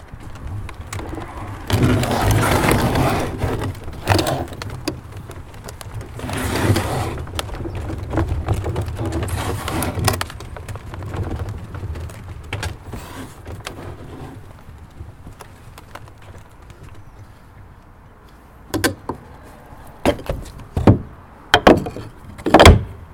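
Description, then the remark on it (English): A wooden coal wagon, its brake pad lifted off the wheel by a wooden chock, is rolled along and back with creaky, groaning squeals over a steady low rumble for about fifteen seconds, then sharp clunks and knocks sound near the end. “I think, imagine if it was rumbling down a steep incline, then it would be a bit louder than that, but it's just kind of creaky, groany.”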